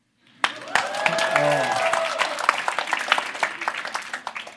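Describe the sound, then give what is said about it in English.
An audience breaks into applause, many hands clapping in a dense, steady patter that starts abruptly and holds for several seconds, with a few voices calling out over it early on. “No clapping for now?”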